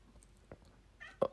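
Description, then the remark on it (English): A cat gives one short, clear meow near the end, moderately loud, after a brief soft knock against a quiet background. “Get these cats out of here.”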